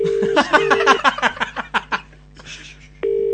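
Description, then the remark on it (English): A phone line's ringback tone: a steady, low-pitched hum that sounds in long pulses, broken up midway by a run of crackly, clicking bursts before the tone returns. “Come on, pick up. He won't.”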